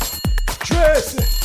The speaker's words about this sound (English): Okay, take a break then. Oh, there goes my phone.